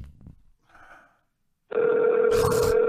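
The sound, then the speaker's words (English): A phone line ringback tone on an outgoing call: a steady, loud electronic purr that starts after a brief quiet stretch and holds to the end, with a short crackle of line noise. “Come on, answer your phone.”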